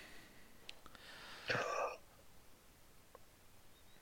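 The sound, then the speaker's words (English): A single breathy, drawn-out gasp lasting about half a second, fairly quiet, performed by a voice as the last gasp of a stabbed prince dying, with a couple of faint clicks before it and near-silence after. “So your stab finds its mark deeper than normal, and with that you can hear his last gasp.”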